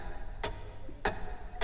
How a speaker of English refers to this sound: And then the clock ticks forward.